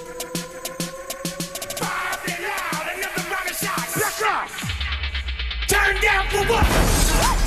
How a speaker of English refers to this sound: I like that there was a warning. So they smashed a fish tank and there was a warning that it's not real fish in there.